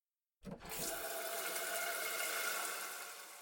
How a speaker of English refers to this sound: As the bucket filled with hot water